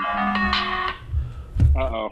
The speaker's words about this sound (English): It's a funky little ringtone you have. Yeah, no, it's. Came with the phone. It's kind of soothing.